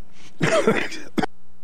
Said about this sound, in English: excuse me for the cough